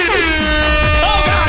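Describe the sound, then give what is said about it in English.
A loud, sustained air horn sound effect blares continuously for about a second and a half, its bright, brassy tone holding steady with slight wavering pitch. “You always forget the air horn.”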